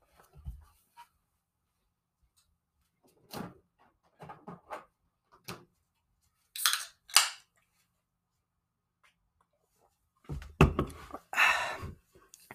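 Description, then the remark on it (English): Someone sips an energy drink: scattered soft clicks and taps of handling, two sharp hissing bursts, then a loud, noisy slurp-like sip near the end. No one speaks. “Yeah, that's me sipping into a energy drink right now.”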